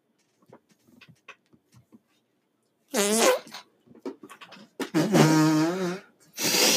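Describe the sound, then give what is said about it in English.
A few soft sniffs, then loud, buzzy fart-like blasts, apparently made by a voice imitating a fart, with one long drawn-out blast near the end and a brief burst after it. “Me smelling my own fart.”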